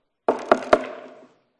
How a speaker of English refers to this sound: Someone knocks on the door. You go to the door and you open the door.